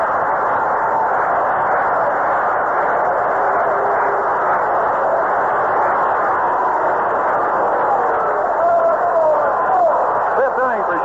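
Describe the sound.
A big baseball stadium crowd roars and cheers steadily at full volume after a 6-4-3 double play ends a half-inning, a dense wall of massed voices with a few individual shouts rising near the end.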